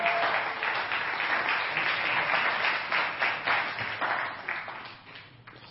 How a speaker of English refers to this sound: So let's give them a round of applause and invite them over.